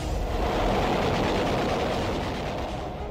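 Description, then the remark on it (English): A land-based plane making a low-level attack during the Battle of Okinawa, trying to silence the U.S. fleet bombardment: it roars through a loud, unbroken wash of noise while rapid gunfire rattles underneath, dense and continuous for the whole few seconds, with no voices. “A plane and a low-level attack.”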